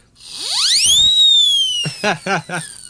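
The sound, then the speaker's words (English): A loud whistle sound effect swoops steeply upward in pitch, then holds a bright, steady high tone for over a second. Three short voice-like bursts sound beneath it near the end. “I am a skeptic whistle.”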